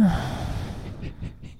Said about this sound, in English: She's yawning at my joke. That's fine. Yeah, because it was so lame. I got tired.